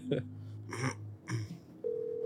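A phone line's ringback tone hums steadily while brief bursts of noise break in a few times, then a higher, clearer tone takes over near the end, as a call is placed to a subscriber.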